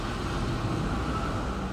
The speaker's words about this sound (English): Wow, that's a big truck. Yo, I was like, whoa. And I just saw a truck that big in my life.